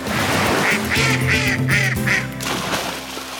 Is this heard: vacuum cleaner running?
no